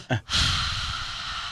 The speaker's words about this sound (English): and I keep breathing really heavily into the mic, I just noticed that.